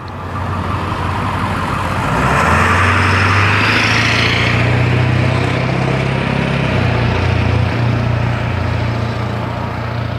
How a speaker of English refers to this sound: Early morning traffic.